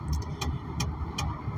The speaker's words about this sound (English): Please excuse that tapping. That's just my, I'm doing this in my car.